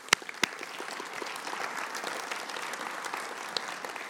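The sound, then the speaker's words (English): An audience breaks into steady applause for the people who served them during COVID, dense overlapping claps forming a sustained wash for several seconds, with a few sharper individual claps standing out at the start. “And let's just take a time to give everybody a round of applause for all the people that have served us during this time of COVID.”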